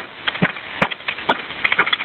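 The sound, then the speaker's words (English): A window of a house being smashed by a man on the porch: a rapid run of sharp, crackling breaks and splintering snaps over about two seconds, with several louder cracks standing out, slightly muffled, and no voices. “He just fucking broke the window.”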